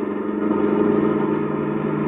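A car engine runs as the driver steps on the gas to come up alongside another car, with a steady, loud mid-pitched hum and a rough, throbbing low rumble, holding evenly for about two seconds with no voices over it.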